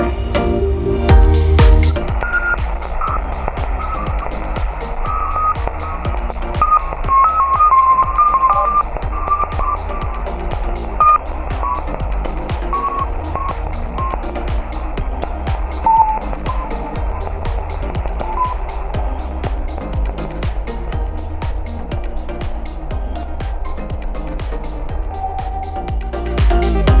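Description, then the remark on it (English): A space radio recording of Ganymede: a steady, dense wash of crackling static with rapid clicking pulses and faint wavering whistle-like tones, loud and unbroken for the whole stretch, with no voices. “This particular recording is a recording of Ganymede.”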